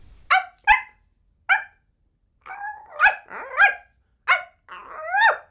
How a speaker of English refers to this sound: Oh, that dog of yours. Why can't it stay quiet? Now you leave Muffin alone. She's the sweetest thing.